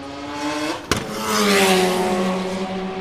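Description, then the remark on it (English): A Mazda RX3 rotary race car roars past, its buzzing engine note sliding down in pitch, with a sharp crack partway through and no talking. “And a beautiful RX3.”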